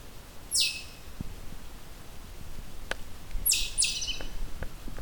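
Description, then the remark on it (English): A soft, high pine warbler trill comes in short bursts, one early and two close together later, set against quiet woodland ambience with a few faint clicks. “There's our soft pine warbler song. Soft trill.”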